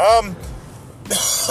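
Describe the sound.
A short stretch of voice fades into near silence, then a single harsh, breathy cough bursts out and trails off as the speaker tries to cough away from the microphone.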